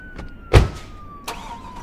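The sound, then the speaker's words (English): A rental car gives a heavy low thump, then a second softer knock, with a thin steady whine gliding slightly downward underneath as the vehicle starts up with stolen keys and begins to move. “Come on, let's fucking hijack the Brit's car.”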